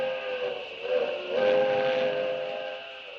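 A steam train whistle blows as the train crosses a long trestle on the railway toward Denver, a sustained, harmonically rich chord with a breathy hiss, swelling slightly in the middle and holding steady throughout, with no voices.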